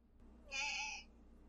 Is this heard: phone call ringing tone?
no